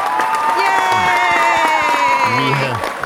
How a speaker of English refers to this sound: We have, I don't know, what do you think, about 120 people in studio with us today? Yeah. And stop clapping.